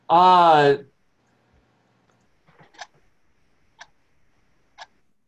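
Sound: clock ticking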